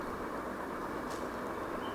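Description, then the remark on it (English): Steady rumbling noise from inside a moving train, a dense continuous roar with faint rhythmic clatter underneath and a brief hiss partway through. No one speaks. “You know, in the train, those who have traveled long distance trains, you know, early in the morning also or late in the night also, if you are sitting in the train, then the train goes kata kata kata kata kata kata kata kata kata kata kata kata kata”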